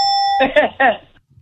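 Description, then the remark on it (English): A steady, loud buzzer sound effect on the sports radio show Felger and Mazz on 98.5 The Sports Hub, during its 10 Questions segment, lasts under half a second, then cuts off as a voice follows with a couple of brief, strongly voiced syllables. “what are our buzzer options?”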